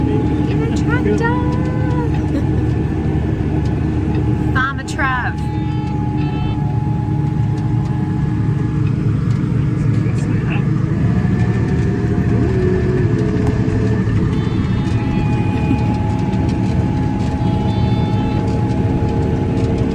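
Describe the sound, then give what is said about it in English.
A tractor engine runs steadily while sowing pastures on a farm, a loud, low rumbling drone with a constant mechanical hum and a few brief rattles, no voices standing out above it. “We're tractoring.”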